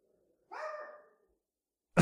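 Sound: dog barking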